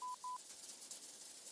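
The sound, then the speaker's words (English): Two short electronic keypad beeps from a cracked-screen phone, just found in mud, being dialed outdoors in the rain, quick and evenly spaced, followed by a soft hiss of background noise with no voices. “I found the number and hit dial.”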